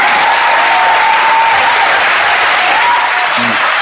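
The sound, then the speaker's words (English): A loud, dense burst of crowd cheering and applause fills the whole few seconds at a steady level, then cuts off abruptly, like a canned sound effect. “Not a lot of gold fans in this crowd.”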